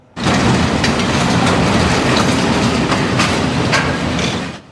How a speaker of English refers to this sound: A number of stacked container cars were being dragged sideways across three sets of tracks